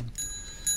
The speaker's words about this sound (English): Can you hit that bell again?